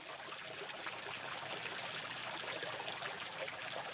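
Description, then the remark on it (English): Water trickles and gushes steadily at a lock on a canal, a continuous bright splashing flow that stays even throughout, with no voices over it. “So we're at a lock, the first lock we've come across on a walk up the canal.”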